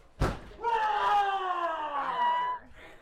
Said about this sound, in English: Massive spider webs covered the shrubbery, and screams ricocheted throughout the house. Much of the experience was dictated by sound, interestingly, considering it was organized and executed by a choir.